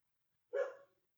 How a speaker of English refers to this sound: The dog agrees. I don't know if that's picking up on the mic or not.